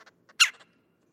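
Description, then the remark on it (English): A fox squirrel gives one loud, harsh alarm bark, clear, with a few quieter, clipped chirps before and after it in an otherwise silent moment. “This squirrel's alarm barks could at first sound like the calls of a red-bellied woodpecker.”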